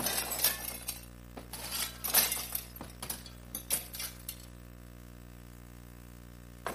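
Mirror glass smashes with a sharp crash, followed by bursts of shards clinking and tinkling as they scatter and settle over several seconds, fading to quiet. No one speaks.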